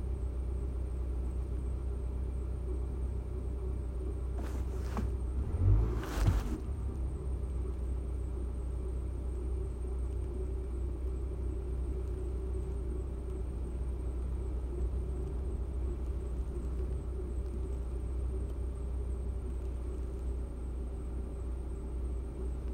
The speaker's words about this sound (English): Oh boy, why is my car making a weird sound?